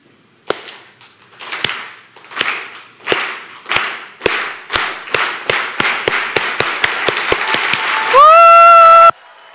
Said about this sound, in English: Okay. We can stay seated. I'm not going to make you stand. But I'll start it, and I would encourage you to join in and then just to cheer and say thank you for God. Are you ready?